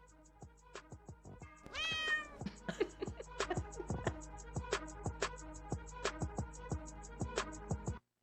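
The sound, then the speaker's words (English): A single loud, drawn-out cat meow rises and falls near the start, set against a steady, punchy music beat that continues for several seconds and then cuts off abruptly. “And then if you can cut the nails for my cat so I don't get as deathly clawed, that's also a win.”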